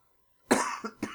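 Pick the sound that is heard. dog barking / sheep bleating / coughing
coughing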